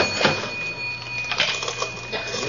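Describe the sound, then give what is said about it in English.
A cash register in a store opening with a few sharp mechanical clacks and a rattling drawer, fairly loud, over a faint steady hum. “Let's go through the cash register.”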